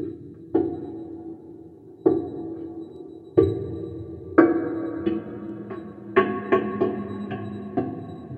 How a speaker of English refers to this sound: That's just the thunking of a glass table.